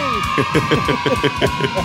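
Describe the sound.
Steady, droning car-interior hum from driving runs continuously beneath a man talking, the road noise staying constant throughout the short clip.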